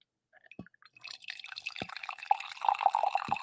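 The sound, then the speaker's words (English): Coffee pours into a mug with a steady trickling splash that builds and rises in pitch as the cup fills, ending in a spill, punctuated by a few soft drips and clinks, fairly quiet. “Everyone stop staring at my sexy stubble and just appreciate the noise, the ambient wonder of the pour.”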